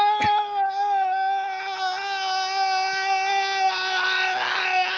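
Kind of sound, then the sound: human body sound, person screaming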